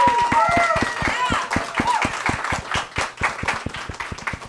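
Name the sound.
audience applause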